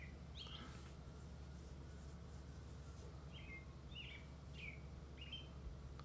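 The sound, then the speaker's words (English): Several short, high bird chirps ring out in scattered bursts over a steady low hum, fairly faint against the background noise. “As you're saying this, the birds are tweeting in the background.”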